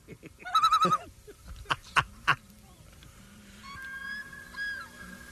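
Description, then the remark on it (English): A loon call: a quick, pulsing tremolo of wavering notes, then a few sharp clicks, followed by long, drawn-out tonal wails that rise and fall gently over a faint background. “I've heard the loons in Maine in the evening, and it is haunting.”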